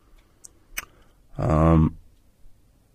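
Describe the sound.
Two quick, soft clicks of a computer mouse, clicking for more information on a show ticket listing, followed by a short voiced murmur from someone, then quiet.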